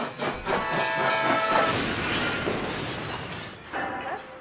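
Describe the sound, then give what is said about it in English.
A voice imitates a train wreck with a harsh, sustained hissing and crashing noise, whistle-like tones streaking through, lasting several seconds and fairly loud. “I can sound like a train wreck.”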